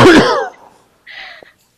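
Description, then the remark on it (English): A single sharp, loud cough bursts out, followed by a quieter raspy throat-clearing sound about a second later; no one speaks. “I am so sorry for coughing again.”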